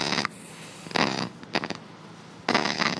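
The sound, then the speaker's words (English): A giant flightless parrot, held in a person's arms, gives a deep, grumpy, rasping grumble in four harsh, noisy bursts separated by short pauses, the last one longest and loudest, with no talking. “emerges with a giant parrot carefully clutched in her arms, a parrot making a very strange, very grumpy noise.”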